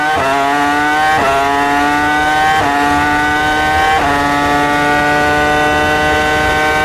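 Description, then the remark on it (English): A Ferrari Formula 1 V10 engine, driven by Michael Schumacher at the 2003 Japan Grand Prix, screams at very high revs of about 18,300 RPM, loud, climbing steadily and then dropping sharply at quick gear upshifts about every second and a half. No one speaks. “From the golden era of F1, this is what that engine sounds like.”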